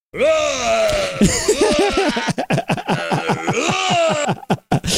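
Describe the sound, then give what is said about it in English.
A film killer's scream in slow motion as he kills: deep and drawn-out, slowed to a low, groaning pitch, sliding and wavering for several seconds before breaking into choppy, stuttering bursts. It is loud and continuous, with no other voices. “Every time he kills, and in slow motion, he screams in slow motion.”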